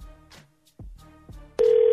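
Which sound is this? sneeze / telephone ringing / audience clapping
telephone ringing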